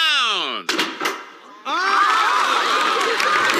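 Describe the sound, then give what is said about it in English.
A crowd at a Springfield fire-engine fundraiser auction in The Simpsons murmurs steadily on hearing celebrity auctioneer Krusty announced, many overlapping voices blending into a dense, fairly loud babble. Before it, a single voice glides downward and a couple of sharp knocks sound. “I could hear all the crowd murmuring in this clip now that it's isolated.”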